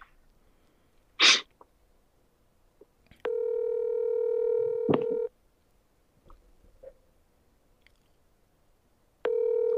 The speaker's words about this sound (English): Still ringing. Ring, ring, ring. Watch, he answers.